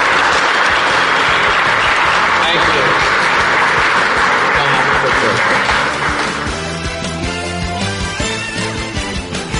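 An audience breaks into loud, sustained applause for David Stern, a dense wash of clapping that thins after several seconds as steady music rises underneath and takes over.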